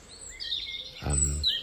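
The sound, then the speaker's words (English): Small birds chirp outdoors in quick, high tweets, fairly soft, with a brief low humming sound cutting in partway through before more chirps follow. “So I see a whole range of birds down here.”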